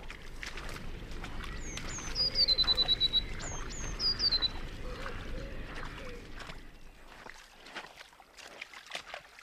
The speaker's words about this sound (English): you can hear the blue tits in the trees, and it seems almost that they are waiting for me to come and pre-bait the traps, and they seem to sort of follow you around as you go. And I'm sure if you listen, you will hear some blue tits now.